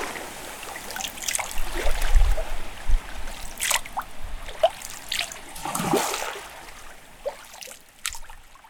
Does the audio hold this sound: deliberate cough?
no